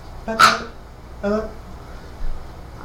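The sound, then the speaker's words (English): A person's voice imitates a dog, giving two short, gruff bark-like yaps about a second apart, moderately loud, with a rough growly edge. “The dog's gonna bite you.”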